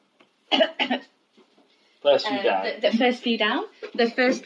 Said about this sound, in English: you're coughing a bit there. I had a tickly throat, sorry.